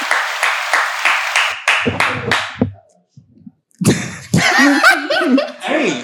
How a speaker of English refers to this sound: Round of applause. Round of applause, bro.